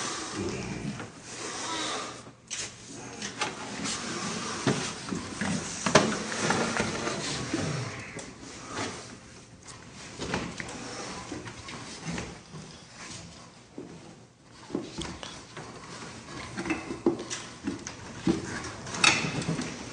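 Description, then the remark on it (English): The electric motors on Oryk whir steadily, a busy mechanical drone with clicks and clattering surges that rise and dip throughout, with no voices present. “You can actually, you can hear the motors on on Oryk.”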